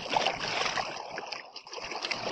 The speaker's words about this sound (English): I can't hear you over the bubbling stream.